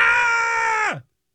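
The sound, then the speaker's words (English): Three people in a Tesla at a graveyard late at night scream in fear: a loud, high-pitched scream held steady for about a second, then sliding downward in pitch and cutting off into silence. No talking accompanies it. “Accompanied by his fiance and brother, these three people can be heard screaming in fear.”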